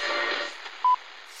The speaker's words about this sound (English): What phone is that? That's the second time it's gone off.